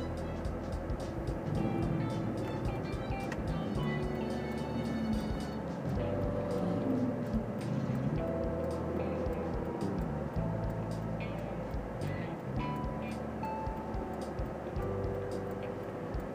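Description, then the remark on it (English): Steady low rumble of traffic moving along a road, heard while waiting to pull out into it, a continuous wash of engine and tire noise with occasional brighter clicks and tones on top, no speech. “Traffic, so I'm gonna be pausing a lot in this conversation, trying to find a good empty spot to pull out.”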